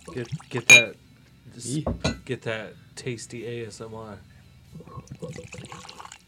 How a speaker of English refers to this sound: We're gonna have a spot of it neat. I'm pouring. Oh, should I do it with the microphone? I'm sorry. So I'm pouring one finger each.